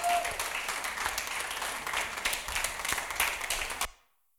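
A crowd applauds steadily, dense clapping at an even loudness for nearly four seconds before it cuts off abruptly into silence.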